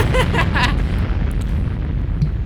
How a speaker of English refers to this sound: Jesus Christ, man. Another explosion or some shit.